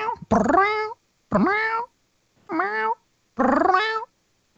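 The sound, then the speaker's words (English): A person's voice imitates a cat, letting out four drawn-out, wavering meows separated by short pauses, loud, with no other talking. “Give us your best cat impersonation.”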